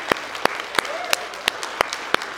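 A church audience claps in worship to the Lord: sharp, steady hand claps ring out in an even rhythm, about three per second, over a dense wash of scattered applause.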